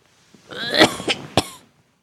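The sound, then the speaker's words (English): A man, a king lying on his bed, gives a short, raspy bout of coughing, two or three harsh bursts, ending in a sharp final cough, with no talking. “Just a little bit of a cough.”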